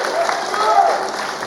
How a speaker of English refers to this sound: Big round of applause, come on.